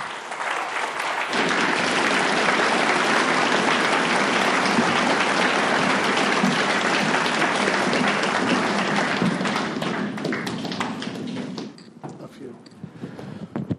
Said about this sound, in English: One more time, a round of applause for our speaker.